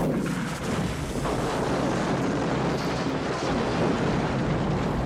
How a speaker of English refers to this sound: Wow, it blew that wheel right off the truck. Did you see that? Pretty good explosion.